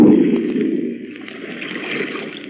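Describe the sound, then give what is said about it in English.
A ship sinks into the water in its final plunge with a rushing, churning gurgle, loud at first, then settling into a steady bubbling wash as it goes under. “Look, it's sinking. By George, the final plunge. There she goes.”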